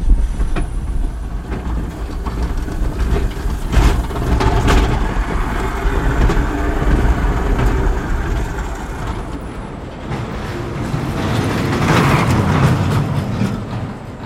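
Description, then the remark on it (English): A spinning roller coaster with four-seater cars, two riders facing two, rolls along its track and spins around bends, a loud, steady rumble with rattling wheels and clattering cars that swells and eases over several seconds. “So that's Pandemonium.”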